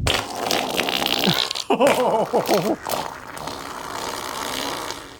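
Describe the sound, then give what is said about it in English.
A wet, foamy fart sputters for several seconds, a hissing bubbly texture broken midway by a run of warbling, pitched blurts before fizzing out again. “Yeah, it's a bizarre sounding fart.”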